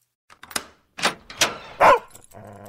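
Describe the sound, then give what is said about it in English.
A dog lets out three or four sharp, loud barks, spaced unevenly, at its owner arriving home, after a few brief clicks and rattles, with a low steady hum coming in at the end. “That time you got home from a week of double shifts and your dog didn't recognize you.”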